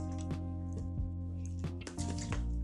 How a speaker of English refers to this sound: Sparkling water, man. Nothing like it.